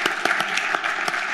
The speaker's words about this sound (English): Thank you to Boingo for being our title sponsor of the Sports Business Radio Roadshow. Let's give them a hand.